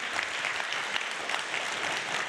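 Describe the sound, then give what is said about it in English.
Steady audience applause fills the space, a dense wash of many hands clapping at once, sustained and even in loudness with no voices standing out. “Can we just give them a round of applause?”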